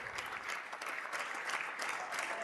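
Steady applause from an audience for Joe Biden, a dense patter of many hands clapping continuously, with no voices standing out above it.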